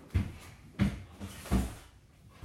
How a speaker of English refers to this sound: So I'll just put it in this bottom drawer.